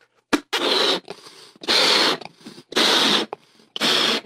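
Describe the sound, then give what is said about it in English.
An orange balloon is inflated by mouth with four strong, breathy puffs of air in a steady rhythm, each about half a second long with short pauses and quick intakes of breath between them; no talking. “And I'm going to blow up a balloon, simple thing, and that's going to take my gas, push it into a balloon, and close it up.”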